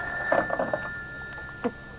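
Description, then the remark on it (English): An old-style telephone bell rings in a quick rattling burst, then a brief second jangle, with a faint steady hum underneath and no one speaking. “Shall I get it for you? No, I'll get it. At least I'm safe on the phone.”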